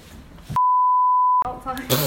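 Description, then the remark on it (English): A single loud, steady censor beep lasting just under a second abruptly replaces a stretch of talk, with speech cut off right before it and resuming immediately after. “Hey, that's a nice little beep you got there. I did that on purpose.”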